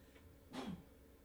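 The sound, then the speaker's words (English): A single quick sneeze, short and somewhat muffled, bursting out once from otherwise quiet near-silence, with no talking around it. “Got a little sneeze there.”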